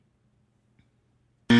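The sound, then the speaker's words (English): After near silence, a loud, harsh game show buzzer suddenly blares during a tiebreaker round and holds steady until the end, a single rich, reedy electronic tone. “He's not buzzing in. I'm not going to buzz in either.”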